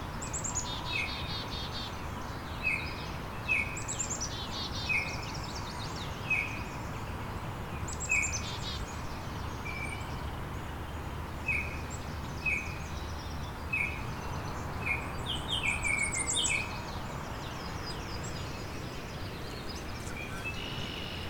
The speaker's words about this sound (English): This Cape May warbler just crawling along thick branches and trunks, picking bugs from between the cracks. There he is again.